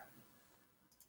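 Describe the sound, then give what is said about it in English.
Two quick, crisp computer mouse clicks land close together near the end, light and faint against a quiet background with no voices, clicking on the specs of the LG model 32GN600-B. “Click on specs. Clicking on specs.”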